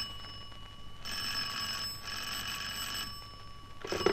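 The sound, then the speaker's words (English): An old-fashioned telephone rings in bright, trilling bursts, about a second on and a second off, with three rings sounding before another begins at the end, over a low steady hum. “Expecting a call? I am indeed.”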